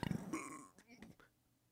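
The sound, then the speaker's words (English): A single muffled belch, held behind closed lips, low and throaty with a brief buzzing burst, followed by a few soft breathy sounds trailing off into quiet. “There was an attempt there because I didn't open my mouth.”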